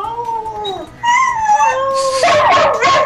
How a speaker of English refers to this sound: We have all these dogs. What am I going to do? Well, I think we'll let them bark